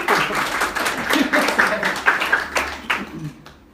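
A crowd applauds a writer being introduced, many hands clapping at once in a dense, crackling patter that holds for a few seconds before thinning out and fading.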